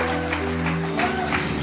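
A church audience claps steadily in a dense, noisy patter of many hands, the applause swelling a bit louder toward the end, with a low steady hum underneath.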